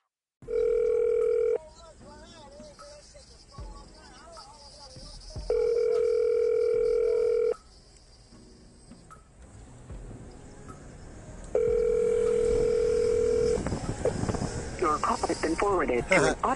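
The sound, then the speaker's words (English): An outgoing phone call to the caller's daughter rings on the line: three steady two-second ringback tones spaced evenly several seconds apart, clear and fairly loud, with faint muffled background noise between rings; she does not answer. “I'm gonna call my daughter back because I was supposed to be called her back”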